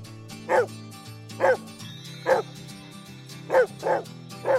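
About 37 sled dogs in a dog yard in Hovland bark and yip in six sharp, loud bursts at uneven intervals over a steady low musical drone.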